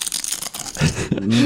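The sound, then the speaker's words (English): A Cupid's arrow sound effect: a scratchy, rustling whoosh, then two short voiced twangs that rise in pitch and end on a sustained tone. The whole effect lasts about a second and a half. “Now, this is what Cupid's arrow sounds like.”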